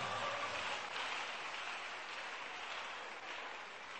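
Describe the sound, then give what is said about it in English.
A crowd claps steadily for the whole stretch, a dense, even patter of many hands with no pauses or speech, holding at a constant moderate loudness. “If you don't clap for my latest CD, I will do something to you.”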